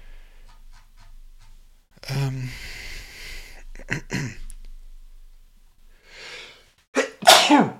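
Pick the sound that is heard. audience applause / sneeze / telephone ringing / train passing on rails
sneeze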